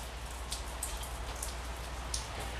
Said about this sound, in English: I'm going outside for a smoke right now. Anyways, listen to the rain. Listen to me smoke.